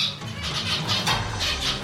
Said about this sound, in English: So males could add that and do it three or four times, and that would be a longer and more complex song that a female zebra finch would be particularly sensitive to and would really like.